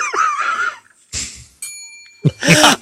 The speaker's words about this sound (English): I love these gentle bells. Oh, you're just reaching out. You're just touching.